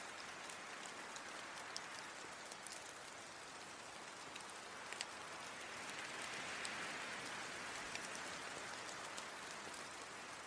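Steady rain falling, a dense continuous hiss with scattered sharper drop ticks, holding a fairly even level throughout with a slight swell partway through. No voices.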